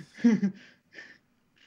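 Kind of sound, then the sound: human body sound, yawning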